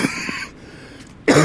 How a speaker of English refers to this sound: I may cough from time to time. But so far, so good. It just feels like a regular cold.